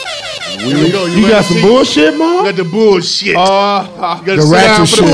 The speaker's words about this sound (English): Give me an air horns.